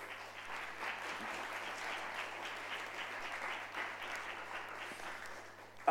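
An audience claps steadily for several seconds, a dense, even wash of many hands that holds at a constant level before ending abruptly.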